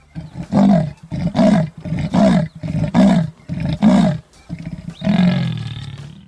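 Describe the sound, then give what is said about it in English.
A big cat, a leopard or jaguar of the kind people call a black panther, roars in a rough, rhythmic series of about six loud grunting bursts, then one longer drawn-out roar, with no other sounds. “Okay, so just to sum things up here, the things that people usually call black panthers are actually leopards or jaguars, and those big cats roar.”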